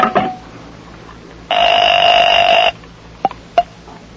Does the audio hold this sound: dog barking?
no